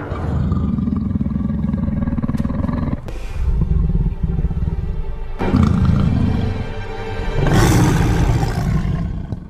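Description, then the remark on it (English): A lion roars loudly, a series of deep, rumbling growls that surge in waves, with breathy bursts between them and no voices. “Let's awaken the lion.”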